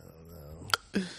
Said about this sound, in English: If anybody has any cures for hiccups, holler at me, I guess.